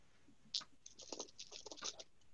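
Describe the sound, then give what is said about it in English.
Small hard objects clatter and rattle together in quick, irregular bursts as someone digs through a bag of dice looking for a ten-sided die, fairly quiet with no talking. “That would work, but I have a dice bag in front of me. I just can't pull a D10 out of it.”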